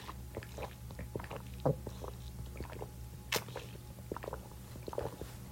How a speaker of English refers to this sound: Hold on, water break.